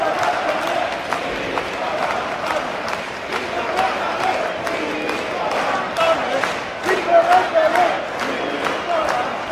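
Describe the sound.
A large indoor arena crowd at Nokia Arena in Tampere, Finland, chants the name of Mikko Rantanen in unison, recorded from the tunnel by the Zamboni entrance; a dense roar of many voices punctuated by sharp claps and thuds, steady and loud throughout with a few swelling peaks.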